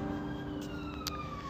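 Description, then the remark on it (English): An ambulance siren wails in the background, heard while walking outdoors on a grey January day at about 3 degrees, its pitch sliding slowly downward over a steady rumble of street traffic, with no one speaking. “I can hear an ambulance in the background.”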